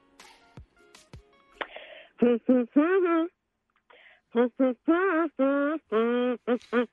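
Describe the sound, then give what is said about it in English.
Someone hums a TV theme tune: a bouncy, rhythmic run of short melodic notes with brief pauses between phrases, after a few faint clicks and rustles at the start. “You hit us with song Hum number one.”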